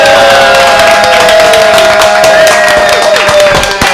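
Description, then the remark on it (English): A crowd at an improv show bursts into loud, sustained applause for the improv troupe Homemade Bangs, with rapid overlapping claps, mixed with whoops and cheers that keep going steadily for several seconds. “Let's give it up for Homemade Bangs, everybody.”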